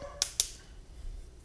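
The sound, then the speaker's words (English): Two quick, sharp barks from the speaker's dogs a fraction of a second apart, sounding somewhat muffled, followed by a quiet hum. “Sorry, the dogs are barking.”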